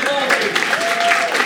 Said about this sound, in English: Round of applause